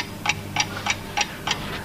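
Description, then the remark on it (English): A clock ticks steadily, five crisp, evenly spaced ticks about a third of a second apart, moderately loud, with a faint low hum underneath and no voices. “have a look at the clock behind you.”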